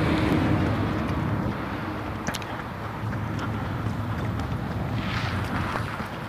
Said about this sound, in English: On a beautiful blue sky day here on the high plains east of the Rocky Mountains in Greeley, Colorado, with way more traffic than I'm comfortable with on this back street.